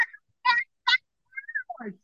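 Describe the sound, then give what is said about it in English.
A high-pitched, nasal human voice imitating a duck, giving a handful of short quacking bursts separated by brief pauses, fairly loud. “It's so, your voice is so high pitched when you're doing that. I can't hear you. And it just sounds, all I can hear is quack, quack, quack, quack.”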